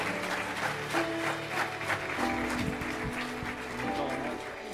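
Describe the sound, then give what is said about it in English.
Sustained audience applause as the crowd, with the house lights up, gives itself a hand. A dense crackle of many hands clapping at steady loudness for several seconds, with a faint murmur of crowd voices underneath. “Y'all give yourselves a hand.”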